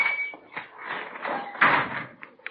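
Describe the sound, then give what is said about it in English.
A stiff wooden door that sticks scrapes and rattles as it is shoved hard, ending in a loud thump midway and a few lighter knocks, with no talking. “Oh, yeah, got to shove that door hard. Sticks a little.”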